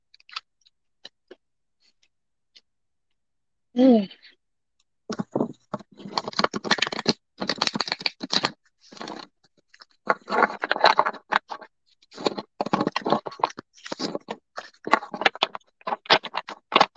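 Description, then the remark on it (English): Cards being shuffled for a card reading: repeated bursts of rapid, crisp riffling and flapping, several in a row, preceded by a brief chirp and near silence. “Okay, we're shuffling for you right now, Jackie.”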